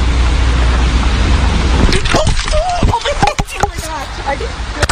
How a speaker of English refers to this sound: I just got hit by a car, but I'm okay